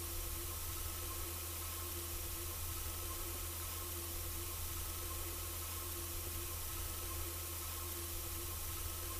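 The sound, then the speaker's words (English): A steady electronic computer warning tone hums continuously over a bed of hiss and low droning like a humming electronic bee, unchanging and fairly quiet throughout, with no voices. “The ever familiar warning sound of the computer overlaid with a humming electronic bee.”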